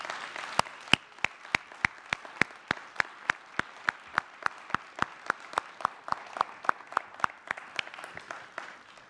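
An audience at Tri-Village gives a round of applause as the leaders of its ministries come up: a steady wash of many hands clapping, with one crisp, evenly spaced clap beating out a regular rhythm above the crowd throughout.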